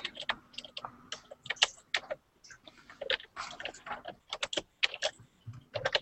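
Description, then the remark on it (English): Rapid, uneven clatter of typing on a loud computer keyboard, sharp clicky keystrokes in quick bursts with brief pauses, fairly prominent, no talking. “your keyboard is very noisy this evening.”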